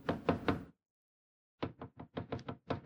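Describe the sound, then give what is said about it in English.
Knocking on a door, in a retelling of the Bible story of Peter knocking while a group prays inside: a quick cluster of three raps, a pause of about a second, then a longer run of about eight sharp knocks, fairly loud with no talking. “And then there was the knock on the door.”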